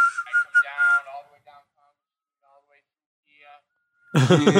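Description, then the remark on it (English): A short burst of wandering, random whistling that is not a recognizable tune, lasting about a second, followed by a quiet pause before a person starts talking loudly at the end. “And it's not even like he's whistling like a recognizable tune.”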